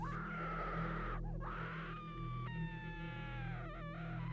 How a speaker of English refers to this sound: The screams. Oh God, they were horrifying. Filled with so much pain, they froze my blood and goosebumps rose across my skin.